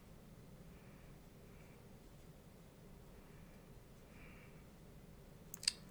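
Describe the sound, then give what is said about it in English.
A quiet background hiss runs throughout, then near the end two or three quick, sharp computer mouse clicks snap out in rapid succession. “I'm on Twitter, clicking around”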